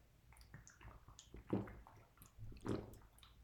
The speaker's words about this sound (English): let me take some water really quick. I'm flipping thirsty. Sorry, guys. Hold on.